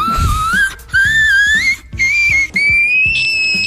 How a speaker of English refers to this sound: singing like a frog.